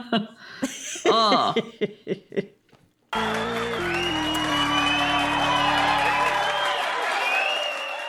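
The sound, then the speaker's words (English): A few seconds of voices give way to a sudden, loud burst of a cheering-fans sound effect, with whoops and shrill whistles over a dense roar that holds steady before fading at the end. “And the sound of our cheering fans means it's time for listener comments.”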